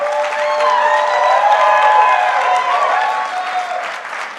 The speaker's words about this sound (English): Well, y'all clap for them. Y'all can do a little bit better than that.